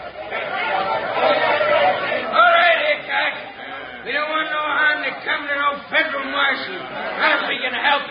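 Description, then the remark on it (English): An angry mob of many voices shouts and clamors together outside a jailhouse they mean to set on fire, an agitated, overlapping din rising and falling without pause as the unruly group approaches. “The local sidewinders, they're figuring to set this jailhouse on fire.”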